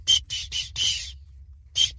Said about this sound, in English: Yeah, that's my hockey whistle.